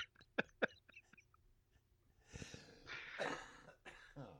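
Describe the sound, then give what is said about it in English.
A few sharp coughs in quick succession, followed by a rougher, longer bout of throaty hacking and breathy wheezing. No talking, just the coughing fit at moderate volume. “Oh, there's that cough, man.”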